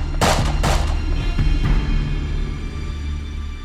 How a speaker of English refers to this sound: As the house exploded, three gunshots resounded.